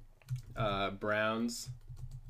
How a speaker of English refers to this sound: You get to hear a lot of typing now.